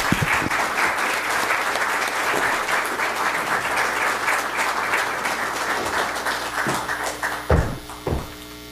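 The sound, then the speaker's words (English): Steady, dense applause from a sizable audience at CSIS in Washington, D.C., welcoming JBIC president Maeda to the stage, a warm sustained clatter of many hands that thins near the end, with a couple of louder thumps as it fades. “So could I ask you, with your very warm applause, to welcome the president of JBIC, Maeda-san.”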